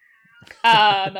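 One of the speaker's own cats lets out a loud, drawn-out yowl in the background, rising abruptly after a faint, quieter lead-in and holding a strained, wailing tone for about half a second.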